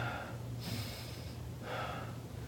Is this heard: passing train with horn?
no